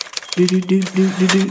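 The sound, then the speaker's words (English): Rapid, irregular typewriter key clacks sound over a low, steady hum of murmuring voices, like the bustle of a busy newsroom. “Hubbub, hubbub, busy newsroom, murmurs, typewriter noises.”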